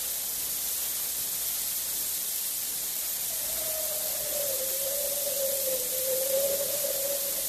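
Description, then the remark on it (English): A bitter cold, high wind blows on a moonlit night: a steady rush of wind hisses throughout, and a thin, wavering howl rises out of it about halfway through and keeps moaning to the end, with no voices. “Bitter cold, and there's a high wind blowing.”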